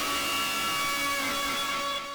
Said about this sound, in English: Just getting some ambiance. Because we're near this... We're near this fountain.